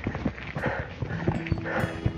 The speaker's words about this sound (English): Oh, Lenny. That's Lenny just giving us a growl.